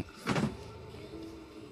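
A drawer holding a bottle of Fireball and weed slides open with one short, rumbling scrape lasting about a quarter second, followed by a low, steady hum. No one speaks.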